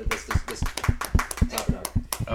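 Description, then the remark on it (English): Steady, rhythmic hand clapping welcoming a surprise guest, roughly nine sharp claps at an even, brisk pace, each with a slightly thumpy body. No one speaks over them. “Clap it up.”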